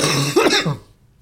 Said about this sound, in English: Sorry, hold on. Let me cough.